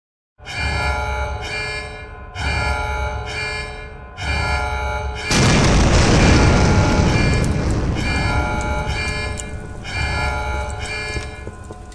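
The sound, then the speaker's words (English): Repeated ringing, bell-like alarm tones give way to a sudden loud, rumbling explosion at the Ixtoc 1 offshore oil drilling platform in the Gulf of Mexico, lasting several seconds before the ringing tones return. No one speaks. “Oil and gas began to pour into the Gulf of Mexico after the explosion, mixing with the water and polluting everything it touched.”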